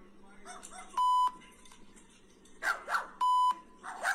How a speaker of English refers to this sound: That dog.